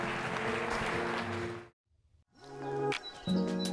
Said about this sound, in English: And everyone said, come on, give the Lord a big hand clap right now.